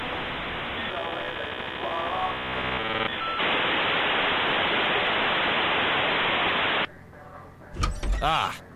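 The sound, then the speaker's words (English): A brief, loud creaking door sound plays near the end on a computer, signalling entry into the AOL Instant Messenger chat platform, following several seconds of harsh, hissing electronic static and tones. There is no talking. “Okay, now, if you have heard the sound of an old creaky door opening, it means I've entered the AIM chat platform.”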